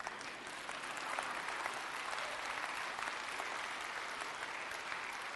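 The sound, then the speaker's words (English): An audience at a worship service claps steadily, dense overlapping applause that swells in the first second and then holds at an even, sustained level throughout, with no voices standing out. “And you ought to be clapping right now.”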